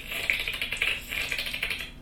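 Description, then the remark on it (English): A high, squealing trill made by a person rolling their tongue while breathing in, a rapid fluttering rattle that holds steady for about two seconds with no talking, sounding somewhat like a dolphin. “It's like rolling my tongue, but I inhale instead.”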